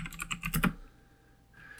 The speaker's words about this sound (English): I am going to go to the internet to get the cast lists because I don't do cast lists. And now you get to hear my loud-ass keyboard.